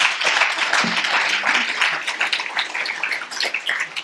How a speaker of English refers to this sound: But just before I put my book down, would you give Bernie Monk a round of applause?